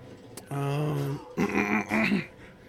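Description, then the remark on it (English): Someone clears their throat: a drawn-out voiced hum followed by two rough, raspy bursts, loud, with no talking around it. “Sorry, I didn't mean to clear my throat, but, you know, it's just going to happen now.”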